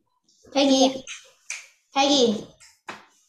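A dog scratching at a door lets out two fairly loud, drawn-out barks about a second and a half apart, with a couple of short, sharp clicks in between. No one speaks.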